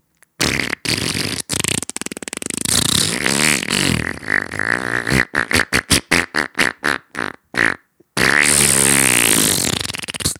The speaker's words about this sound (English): Then, when he was meeting with the highest-ranking military officers, General Yamashita, one of the greatest generals in World War II on the Japanese side, farted a long, wet, disgusting fart. This is a historical reenactment.